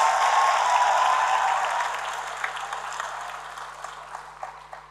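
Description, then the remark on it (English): An audience applauds with dense, steady clapping that gradually thins out, leaving scattered individual claps toward the end. No one speaks over it. “Yes, absolutely, you can applaud it because that is my prayer for us in this place.”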